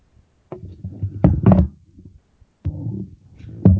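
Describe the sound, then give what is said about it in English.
A heavy thud of someone falling off a chair, with several clattering knocks and bumps tumbling over a few seconds and rumbling scrapes between the impacts. “Somebody just fell off a chair.”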